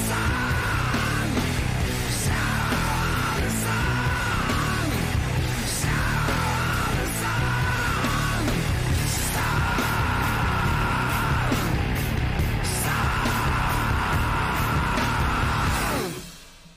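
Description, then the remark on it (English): Loud, dense rock music with a singer letting out long, sustained screams at the end of the song over pounding drums and distorted guitars, repeated several times before the track cuts off abruptly. “how does he scream that?”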